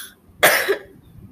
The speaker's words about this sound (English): Hold on, I have to cough.